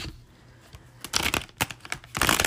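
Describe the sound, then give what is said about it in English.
A Morgan Greer tarot card deck being shuffled: a quiet start, then several crisp, papery riffling bursts in quick succession, with no voices. “You just get a couple more shuffles on my Morgan Greer deck.”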